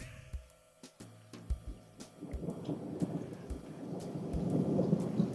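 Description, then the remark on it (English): Low thunder rumbles and swells steadily louder over several seconds during a rainy thunderstorm, with scattered sharp crackling taps near the start. No one speaks. “It is thunderstorming where I am.”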